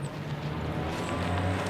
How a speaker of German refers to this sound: Da kommt ein Auto.